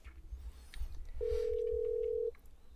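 A phone call connecting: one steady, clear electronic ring tone sounds for about a second over low background rumble, with no one talking.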